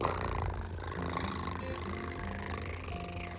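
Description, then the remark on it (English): A little female kitty purrs steadily while being picked up, with a low, rumbling, continuous vibration, fairly loud, layered over a soft tonal background with no talking. “Aaron picked up this little kitty and she purred.”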